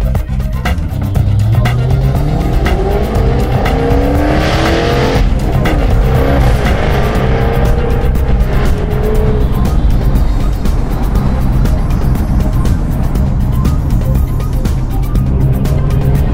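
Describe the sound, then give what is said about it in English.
A car pulls away from traffic lights, its engine loudly revving up in rising sweeps and shifting through several gears, then settling into a steady rumble. No one speaks. “And I'll leave you with the sound of this car as I pull away from these lights.”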